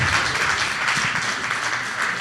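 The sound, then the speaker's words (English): An audience applauds, a dense, steady wash of many hands clapping at once that holds an even level for the whole couple of seconds, with no voices breaking through. “And we should clap for that.”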